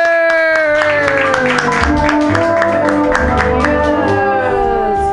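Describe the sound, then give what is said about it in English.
An audience at a comedy show at Mutiny Radio in San Francisco claps for the next comedian in a steady stream of sharp, overlapping hand claps lasting about five seconds, loud and continuous over a sustained, ringing tonal backdrop. “And clap your hands.”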